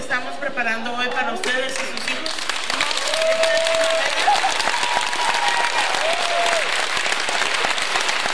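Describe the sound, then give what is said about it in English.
A brief voice gives way to a sustained, steady round of applause from an audience, dense clapping lasting several seconds with a few faint whoops and whistles rising through it. “That's not necessary to give her a round of applause.”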